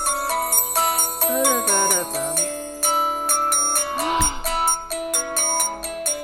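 A song plays tinnily through a phone speaker, with a steady pulsing beat and bright, ringing melodic notes carrying a chugging rock rhythm throughout, no voices talking over it.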